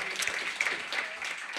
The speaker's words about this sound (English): All right, give her a round of applause.